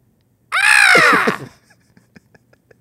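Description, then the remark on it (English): A person imitates a Jayhawk call with one loud, harsh, screechy caw lasting about a second, followed by a few faint clicks and taps. “Was so looking forward to another bad bird noise.”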